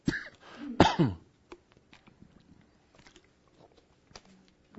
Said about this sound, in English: Let me take a sip of water here.